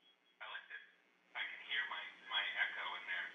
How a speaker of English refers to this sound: They gotta get these phones fixed. Dr. Dad? I like this. I can hear my echo in there.